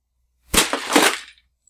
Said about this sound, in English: Something slammed against the thin metal grate in front of me.